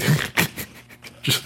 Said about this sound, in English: just fucking eating with the dog barking in the background.